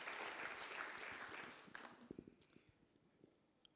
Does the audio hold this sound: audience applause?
yes